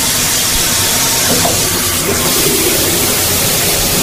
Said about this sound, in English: The sound of the shower running is at number six. These are the most comforting sounds, by the way.